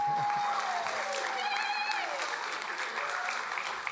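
An audience breaks into steady, sustained applause, a dense wash of clapping that holds at an even level for several seconds, with a faint whistle-like tone threading through it.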